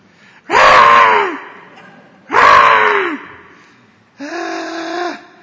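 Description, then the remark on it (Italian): A voice imitates a newborn baby crying for milk, giving three loud, wailing cries in a row, each about a second long and separated by short pauses. The cries are clear, with no other sounds. “I bambini appena nati, quando vogliono latte, hanno un modo di assicurare che tu gli darai quel latte, giusto?”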